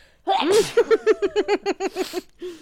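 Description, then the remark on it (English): A single sharp sneeze bursts out, followed by a quick run of rhythmic, breathy laughter that trails off with a short exhale. “Oh, man, I got to sneeze.”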